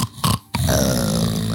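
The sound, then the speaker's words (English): A voice imitates the character Braxton snoring: two short, rough bursts with a brief pause, then one longer, loud, throaty rasp with a low buzzing pitch. “And you look over and Braxton's there just snoring.”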